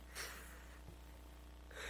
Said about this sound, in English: She was yawning.